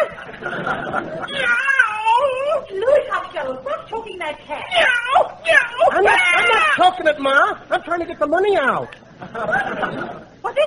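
A cat meows over and over for about ten seconds, a loud run of wavering, drawn-out cries that rise and fall, sometimes overlapping into a yowling caterwaul.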